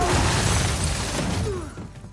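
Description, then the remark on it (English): A loud crash of a wall of glass shattering as Jason Statham is thrown through it in a fight scene, bursting out at once, with bright shards and debris rattling on and slowly fading over about two seconds; no one speaks. “And then, like, 8 seconds later, Dwayne Johnson will throw Jason Statham through a wall of glass.”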